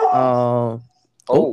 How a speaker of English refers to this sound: I'm sorry. That's a big dog.